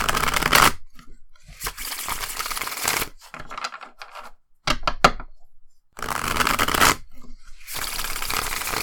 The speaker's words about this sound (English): Okay, so I'm going to shuffle. I might cut the shuffling sound out, depending on how it sounds.